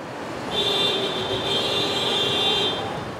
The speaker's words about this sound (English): Cars screaming out in frustration against a backdrop of idling engines and street vendors. Roughly 90,000 people cross the San Ysidro port of entry every single day.